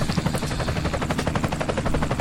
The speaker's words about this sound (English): You want to pop a little traffic ring, give us an update right there, and see how we're doing on the old Kudos Chaotic Radio traffic helicopter.